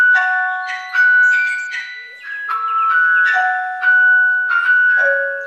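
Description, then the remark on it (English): A doorbell at a house on the outskirts of Beverley, with a proscenium arch over the doorway, plays a long melodic chime tune: a run of bright sustained electronic notes stepping up and down in pitch for several seconds, loud and with no voices. “That's a nice doorbell.”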